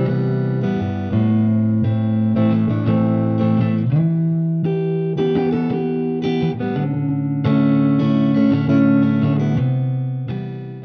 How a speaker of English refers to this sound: … begins with a strum guitar pattern playing the chords C major 7, A minor 7, E minor 7, and D major 7.